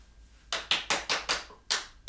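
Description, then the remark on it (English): Crisp, sharp knocking with no voices: five quick evenly spaced raps, a short pause, then two final knocks, loud against a quiet background. “That was to the sound of everyone's afraid of knocking.”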